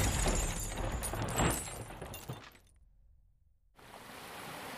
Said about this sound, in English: The van started to shake, and we crashed off the side of the road.